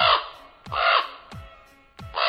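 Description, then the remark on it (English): A common raven, the kind heard at a radio station parking lot and nesting on a nearby radio tower, gives a series of loud, harsh, raspy croaks, roughly one every second, with sharp clicking knocks in between and no talking. “It's the common raven, and that's the sound we often hear when we arrive at the radio station parking lot on Sunday mornings, and we often see one of the ravens blasting off from the tower and cruising across to the woodlot on the other side of the”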